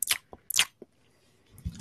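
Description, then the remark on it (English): A spoon being slapped, giving two sharp, bright, wet smacks with softer taps between them, then a low, dull thump near the end. No one speaks. “That's the sound the spoon needs to be making when I slap it.”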